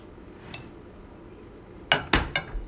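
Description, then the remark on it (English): A utensil scraping melted bittersweet chocolate from a pan while baking: one light stroke, a pause, then three quick, bright scrapes in close succession near the end. No one speaks. “I have bittersweet chocolate, and I just need you to pour this in and scrape it out really well into the pan, please.”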